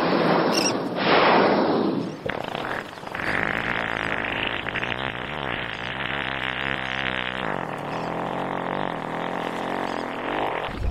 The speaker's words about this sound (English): With luck, we're about to hear one. Will we be able to smell it, too? The farts of the humpback whale do not smell. Oh, hark!